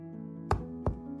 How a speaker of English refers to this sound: Come in, she called in answer to a knock.